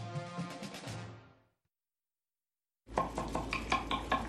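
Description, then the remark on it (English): Dishes and cutlery clink and rattle at a dinner in a busy, irregular clatter, fading out to about a second of silence before the clinking of plates and silverware resumes just as loudly. “These are the sounds of a dinner.”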